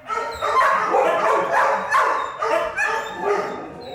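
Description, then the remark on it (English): Hundreds of dogs, big and small, bark, yelp and whine at once in an animal shelter, a dense, continuous chorus with high crying tones rising over overlapping, echoing barks. No one speaks. “Once you've heard a big dog cry, you won't forget it. Or hundreds of dogs, big and small, black and brown and dappled.”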